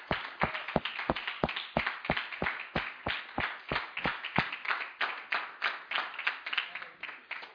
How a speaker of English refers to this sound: We let us clap our hands unto the Lord.